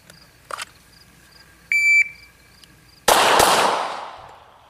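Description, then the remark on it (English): A short electronic shot-timer beep sounds, then after a brief pause two loud, sharp gunshots fire in quick succession, 1.69 seconds in total, at a paper target during a recoil management drill; their echoing roar trails off slowly. No one speaks. “But we got 2 shots in 1.69 seconds.”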